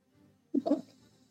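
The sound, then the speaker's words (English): A person briefly imitates a cat, giving a short, sharp meow-like yowl with a breathy hiss edge, a single vocal burst lasting under half a second before fading. “Oh, you're very ferocious. Wow. Did you meow me?”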